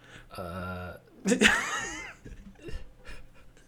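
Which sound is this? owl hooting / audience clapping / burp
burp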